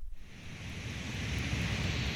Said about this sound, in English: or you can say something like, okay, Google, play white noise. Here's what white noise sounds like.